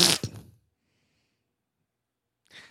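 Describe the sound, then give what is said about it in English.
A single short, loud fart noise, a buzzy, sputtering blast lasting about half a second, followed by silence and a faint breathy rush at the very end. “Fart noise.”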